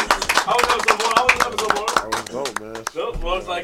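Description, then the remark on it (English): A short round of applause: sharp, irregular hand claps from a few people, mixed in with lively overlapping talk and voices. “Round of applause, man.”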